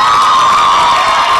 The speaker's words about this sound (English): your friends are cheering me on.